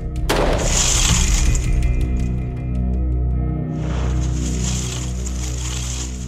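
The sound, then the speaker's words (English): A sharp gunshot cracks as a police officer fires a test shot through an already broken glass door on a firing range, followed by glass breaking and tinkling apart, with a steady low rumble in the background and a second burst of shattering debris partway through. “We had Officer Branion shoot the door again.”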